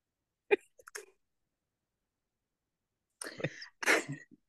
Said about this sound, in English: Bless you.